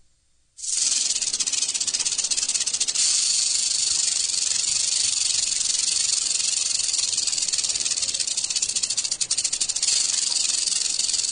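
A rattlesnake's rattle buzzes in a loud, continuous dry whir, starting abruptly and sustaining steadily for about ten seconds, with no voices.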